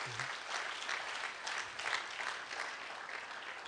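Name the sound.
audience clapping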